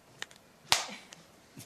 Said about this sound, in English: Give another clap